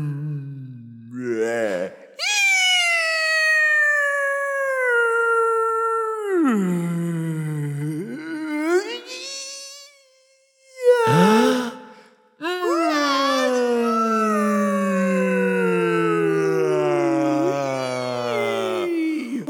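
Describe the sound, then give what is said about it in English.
Long, eerie whale song calls: drawn-out moaning tones that swoop up and down in pitch, several in a row with brief pauses, loud with no talking. “We go drop them off to meet the alien whales, and this is what they say.”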